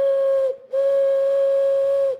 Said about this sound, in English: We got the train coming in, man. The train, CSX.